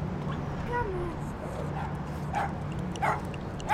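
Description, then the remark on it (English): Rudy, a tiny Jack Russell who sunbathes outside Baba Ghanoush, gives a few short, high yips and whiny barks, spaced out over a few seconds, over a steady low background rumble. “Definitely can't forget Rudy, the little dog who sunbathes outside.”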